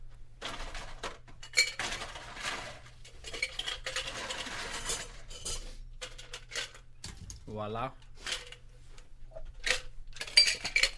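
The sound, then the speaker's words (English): Hard, glassy clinks and clatters of ice dropping into a glass, several bright taps in quick irregular succession, with people talking over and between them. “Can I have some ice, please?”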